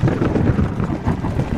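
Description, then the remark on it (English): A deep, steady rumble rolls on under a rush of wind, loud and continuous with no distinct cracks, like thunder grumbling through a gusty storm, under black, rolling clouds at the Borgo Pass. “There were black, rolling clouds overhead, and in the air, the heavy, oppressive sense of thunder.”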